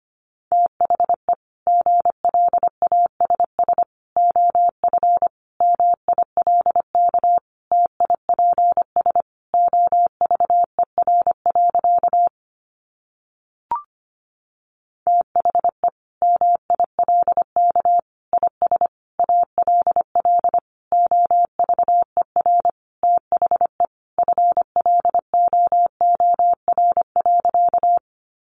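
Morse code sent at about 25 words per minute: a single steady mid-pitched tone keyed in quick dots and dashes, with a short break partway through and no voices.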